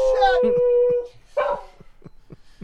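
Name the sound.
dog yelping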